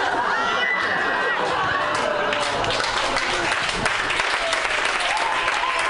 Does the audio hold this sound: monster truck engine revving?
no